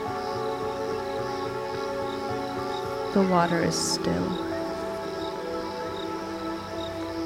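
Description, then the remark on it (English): A steady, continuous chorus of crickets chirps from the shore of a lake, trilling evenly throughout while a person speaks briefly over it in the middle. “You hear loons call, crickets chirp from the shore.”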